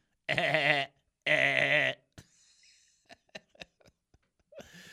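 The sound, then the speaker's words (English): Two loud, wavering bleats like a goat's, each about a second long with a quivering, warbling pitch, actually an audio technical glitch in the sound of the Truth Station radio broadcast in Texas, followed by a few sharp clicks and a faint rustling hiss. “about the new billy goat that we have that's in our sound. He goes, Yes, that's a technical issue.”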